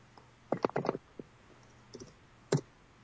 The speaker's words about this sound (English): Well, someone is typing furiously. Sorry, shitty laptop.